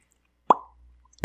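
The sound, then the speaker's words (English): A single hollow pop made with the mouth, sharp at the start and ringing briefly at a mid pitch before fading, followed by a short quiet gap and the onset of another sound. “How'd you do that? With my mouth hole. It's like an old person trick.”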